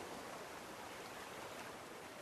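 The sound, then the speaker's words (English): A steady, continuous rush of stream water tumbling over rocks, soft and even throughout with no breaks or voices, heard from a bridge under a blue sky with colorful trees around. “You stop on the bridge and study everything around you. The blue sky, the tumbling water, and the colorful trees.”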